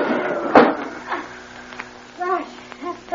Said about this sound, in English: open the window.